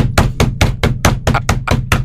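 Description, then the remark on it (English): A voice imitates big feet slapping on a treadmill in a gym while running as fast as possible: a fast, steady run of about nine loud, sharp slaps in two seconds, with no talking. “It's like, this has got to be really distracting for everyone else in the whole gym just to hear the giant flippers slapping on the treadmill as fast as I can possibly move them.”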